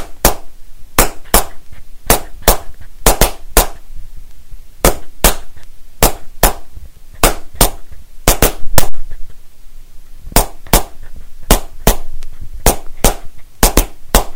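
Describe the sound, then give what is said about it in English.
Crayons tap together in a crisp, repeating rhythmic pattern, sharp wooden clicks grouped in short bursts and pauses, fairly loud, with no voices. “So listen carefully to the crayons tapping and then we'll have a go at doing it.”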